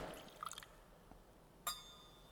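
A small splash of water is poured into the wine in a chalice, a faint, brief trickle followed by a single bright clink that rings out in quiet.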